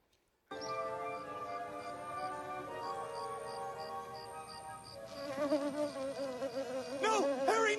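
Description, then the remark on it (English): A steady, whining buzz of two mosquitoes hums continuously alongside the higher, rhythmic electric pulsing of a bug zapper, from a scene in the film A Bug's Life, with the drone shifting and wobbling in pitch toward the end as another buzzing voice joins in. “And there's this great scene with two mosquitoes and a bug zapper.”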